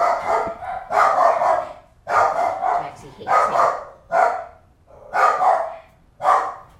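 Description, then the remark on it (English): A dog barks repeatedly, about six or seven loud barks in a steady rhythm roughly once a second, each bark full and slightly drawn out. “There's a brother and some barking.”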